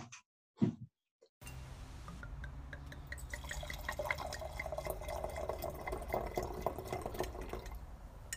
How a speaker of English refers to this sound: The two loveliest sounds in the world are the sounds of a cork popping in the sound of a wine bottle pouring.